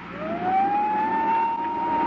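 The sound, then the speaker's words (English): A vacuum cleaner runs loudly and steadily, its motor whine climbing in pitch and then holding one high, even tone over a broad rushing hiss. No voices. “Still keeping the vacuum cleaner going, I made a dive for the desk.”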